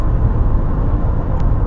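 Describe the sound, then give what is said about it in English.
A steady, loud roar of road traffic with deep rumbling, continuous for under two seconds, with no voices. “But first, we're going to do traffic and weather.”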